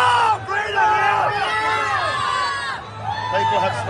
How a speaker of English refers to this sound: People have spoken. You can see the tens of thousands. They're yelling freedom. It's like Braveheart.